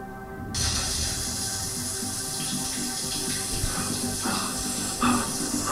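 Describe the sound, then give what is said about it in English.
A shower turns on abruptly and runs in a steady, hissing spray of water, continuing evenly with faint splashing variations and no voices. “Well, I'm gonna take a shower, and then let's grab some dinner.”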